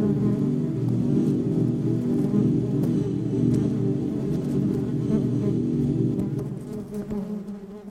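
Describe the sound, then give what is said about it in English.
A dense, steady hum of many honeybees buzzing together inside a hive, loud and continuous with a low droning pitch, fading slightly toward the end. “Most of the research on beehive sounds was on a few hives simultaneously at most.”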